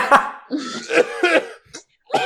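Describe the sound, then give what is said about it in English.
A person deliberately fakes a run of harsh, raspy coughs, several bursts in quick succession with short gaps, some drawn out and voiced like exaggerated hacking. “That's another 9, and you are still coughing.”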